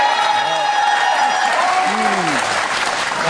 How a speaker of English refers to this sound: First, feel the applause.